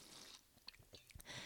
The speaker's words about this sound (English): And speaking of that, I'm going to take a drink right now. Don't mind me.